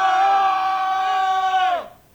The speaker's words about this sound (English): Okay, let's do a little sound test here. Let's all yell at the same time on three. Right. One, two, three. Ah!